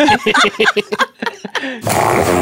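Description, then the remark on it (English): A dog, Smooch, about 7 years old, snoring in a quick series of short, throaty snorts and grunts with a nasal rasp, cut off by a burst of loud, steady hiss. “Listen, that's the way a grown person snores after a long day at work.”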